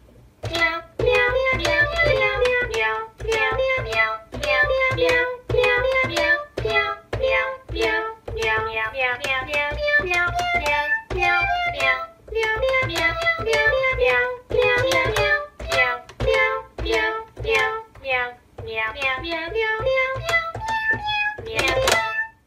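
A bouncy keyboard tune plays as outro music, with every note sounding like a cat's meow, quick pitched meows stepping through a melody in a steady rhythm over a low backing, loud for the whole stretch.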